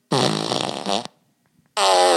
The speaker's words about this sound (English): I had a fart machine, you know, that I have here, which you push a button. When you push the button, it goes.